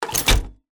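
A wheelchair, used as source material for a designed robot sound, moves briefly, giving a short burst of rolling, rattling noise with a dull thunk in the middle, fairly loud, then it stops.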